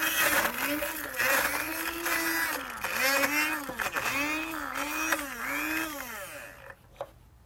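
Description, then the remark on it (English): A blender grinds garbanzo beans loudly for several seconds, its motor pitch rising and dipping in repeated surges as the load shifts, then cutting off abruptly near the end. “All right, we've ground up the garbanzo beans, and to this we add a tiny little bit of jalapeno, but be careful with this because it's only to add some spice and not really make it hot.”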